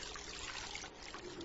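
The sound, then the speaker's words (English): Water dripping from a pointy rock, blending into a steady, soft trickling wash with no distinct pauses, fairly quiet and heard alone without any voices. “First Lieutenant, put your mouth under that dripping rock that is pointy.”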